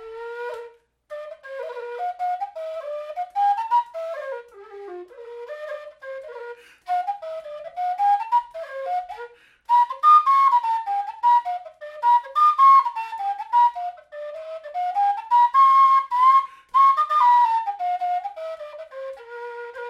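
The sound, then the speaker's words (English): A lively tune played on a Freeman tweaked F tin whistle, bright and breathy, with quick ornamented notes rising and falling in a steady dance rhythm, solo with no talking. “here's Turk's Head back to that Freeman tweaked F whistle”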